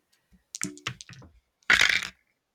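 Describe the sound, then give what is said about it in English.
Dice tumble across a tabletop: a quick run of small hard clicks and taps, a brief pause, then a louder clattering rattle that stops abruptly. No one speaks. “Oh, where'd my dice go? I just had them.”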